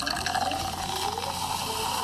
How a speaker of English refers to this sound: Hey, and as we vibing, I'm gonna pour you up a little something.